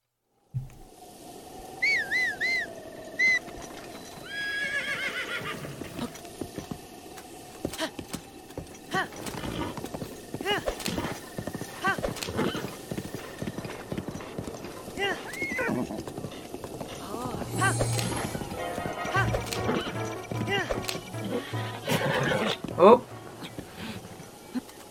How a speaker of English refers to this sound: We're going on the horse, we're going south.